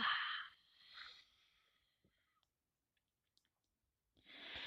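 A slow, deep breath out during a conscious breathing exercise, airy, fading into quiet, followed by a faint pause and a few soft clicks before another breathy rush begins at the end.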